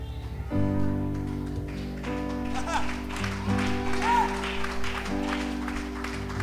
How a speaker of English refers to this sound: Yeah. Let's clap those hands a little while longer right here.